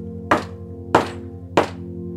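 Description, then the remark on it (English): Three evenly spaced, solid knocks on a door, each a short thunk with a quick decay, over a steady low hum. No one speaks. “And then you knock on the door.”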